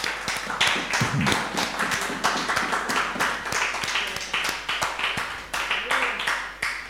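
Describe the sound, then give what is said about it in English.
A crowd at a sermon claps for the Lord in a steady, sustained burst of bright, crisp hand claps, dense and fairly loud, lasting several seconds without talk over it. “Give the Lord a clap of.”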